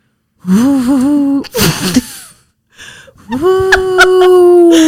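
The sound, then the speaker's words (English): A person imitates a howling wind as a sound effect, with long, wavering, moaning tones, breaking off midway with a breathy gasp, then resuming in a sustained, rising howl, fairly loud. “So, no, that was howling wind.”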